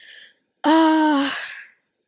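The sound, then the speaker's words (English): A short breath, then one loud, abrupt cough into the microphone that stretches into a strained, voiced rasp and fades out within about a second. No one speaks. “I mean, sorry, my bad for like coughing in the mic like that.”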